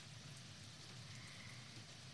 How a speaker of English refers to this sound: Okay, let's go to Atlanta rain. They actually have an Atlanta rain.